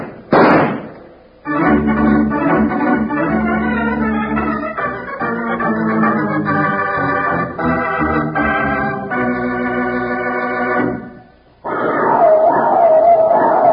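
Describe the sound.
A human voice gives a cowboy's cry imitating a long, wavering animal howl, holding a loud sustained cry that steps up and down in pitch for about ten seconds after a brief noisy burst, with more sound following.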